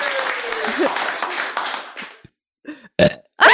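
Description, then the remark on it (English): A long, rough, forced burp, made by forcing air in and pushing it out, rumbles loudly, followed after a short pause by a few shorter belching gulps. “You kind of do something where you force air in and then you push it out.”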